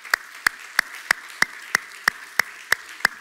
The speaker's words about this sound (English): Could you give the Lord one more hand clap?